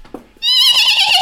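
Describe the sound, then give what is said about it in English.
A person lets out a loud, high-pitched scream that wavers like a horse's whinny, lasting under a second after a brief quiet moment. “That is not how you scream. That sounded like a whinny. That is a horse neigh.”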